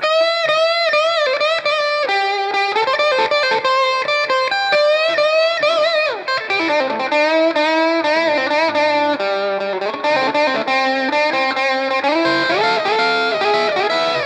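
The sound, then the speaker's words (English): A sustained instrumental solo, likely an effects-laden electric guitar, plays loud and continuous with gliding, bending melodic lines and a washy, reverb-drenched tail, with no voices present. “That was soaked in reverb, wasn't it?”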